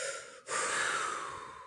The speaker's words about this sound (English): These are just a few things that we do when those problems arise. One, we breathe.